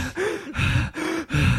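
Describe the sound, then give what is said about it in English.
A voice imitates rapid hyperventilating gasps, four quick loud breaths in a steady in-and-out rhythm, with no other sounds. “At this point, he starts hyperventilating.”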